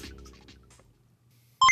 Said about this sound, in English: Calculating computer activated. Computers. Beeps. Space. Boops.